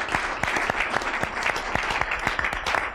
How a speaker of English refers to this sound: So let's give them a round of applause just for coming tonight, and then let's have our first question.